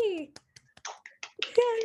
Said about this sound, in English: Yay. We don't usually do applause, but I just felt like with such a big introduction, we needed one.